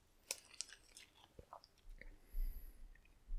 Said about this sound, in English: Sorry. Sorry, I had to take a swig of water.